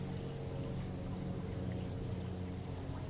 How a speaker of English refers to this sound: You want to hear the splashing of the fountain?